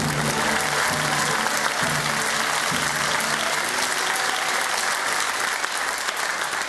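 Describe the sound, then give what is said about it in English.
Loud, sustained applause from the studio audience of the show The 99p Challenge, a dense steady wash of many hands clapping with a few faint tonal notes underneath early on, continuing evenly throughout. “Ah, I love the smell of clapping in the evening.”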